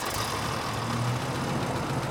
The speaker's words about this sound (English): The Imperator holstered his pistols, climbed into his rig, and started the engine.